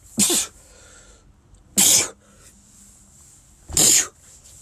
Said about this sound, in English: I'm gonna sneeze right.